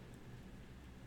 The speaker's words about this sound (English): I think it might be rain. Let me go check the window really quickly.